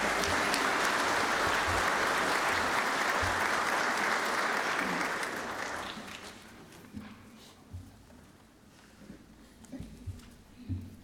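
An audience gives another round of applause for a performer: a sustained wash of applause, dense and loud for about five seconds, then fading out into scattered quieter sounds and a few soft thumps.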